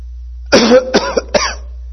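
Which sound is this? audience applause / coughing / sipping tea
coughing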